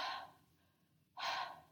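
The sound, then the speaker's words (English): A voice imitates Amy Adams' heavy, dramatic breathing in the film Arrival: two loud, airy breaths separated by about a second of quiet, with no talking. “There's a lot of wonderment in Amy Adams' eyes, and a lot of, like, breathing heavy. Like, staring off into things going...”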